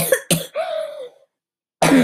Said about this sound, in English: Sorry about that cough, but I am not recording this because I'm 8.5 minutes in the segment.